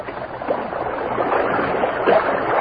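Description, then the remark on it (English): Continuous sloshing and splashing of water as the Lone Ranger wades knee-deep into a stream to retrieve a floating bottle, with a couple of louder swishes stirring the surface. Steady, with no voices. “The Lone Ranger waded into the water knee-deep, secured the bottle, and returned to Tonto's side.”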